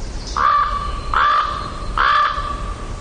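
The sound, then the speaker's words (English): Three low, harsh croaking calls from a raven, evenly spaced about a second apart, fairly loud against a quiet outdoor background with no talking. “Crows give a cawing sound, but ravens produce a lower croaking sound.”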